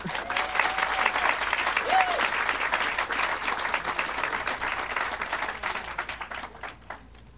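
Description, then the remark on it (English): A steady round of applause from an audience at an author reading, welcoming the first reader, author Akhil Sharma; dense overlapping claps sustained for several seconds before thinning out and fading toward the end. “So let's give a warm round of applause for our first reader, who is, who did I say?”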